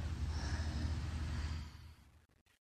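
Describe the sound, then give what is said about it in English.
A strong, forceful exhalation pushed out through the nose or mouth as one of a set of breathing-exercise breaths with a strong contraction, loud, with a breathy rush that fades after about two seconds into quiet. “Listen to your own breathing. It should be pretty strong. We should be hearing each other's breath. Really expel the breath.”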